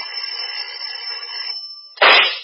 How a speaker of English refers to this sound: Pistol shot, Craig. From inside the house.